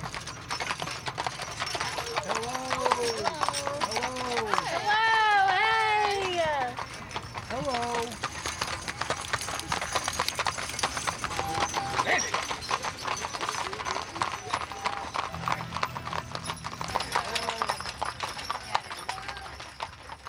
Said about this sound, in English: Here come the mules.